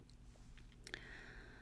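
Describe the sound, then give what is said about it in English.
A quick, quiet second sip from a drink: a soft slurp followed by a brief wet click and a faint lingering ring, against a low background hum. “Second sip.”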